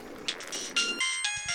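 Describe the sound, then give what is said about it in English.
A phone rings with an incoming call from a child's school, a bright electronic ringtone cutting in after a burst of clattering noise, fairly loud. “This is my kid's school. I gotta get this”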